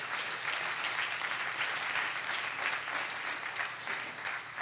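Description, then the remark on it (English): Sustained applause from a large group giving a hand clap of praise to the Lord, dense overlapping hand claps filling the space at a steady, even loudness for several seconds, with no voices standing out. “Somebody give the Lord a hand clap of praise today.”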